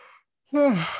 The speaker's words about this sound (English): Who's listening now start yawning. But yeah, sorry about the yawns, kids.